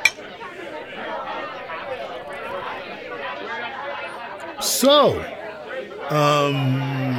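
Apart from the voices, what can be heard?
party crowd chatter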